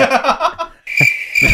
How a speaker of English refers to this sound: Crickets, please.